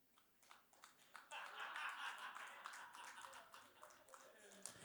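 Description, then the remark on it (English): A quiet, polite golf clap: soft, scattered handclaps that thicken into a light patter of applause midway, then thin out again to a few isolated claps. “That was what I call a golf clap.”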